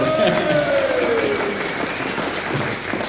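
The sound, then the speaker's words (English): Steady audience applause for two quiz contestants, a dense wash of many hands clapping at a fairly loud, even level throughout, with a brief tonal swoop sliding downward near the start. “Big round of applause.”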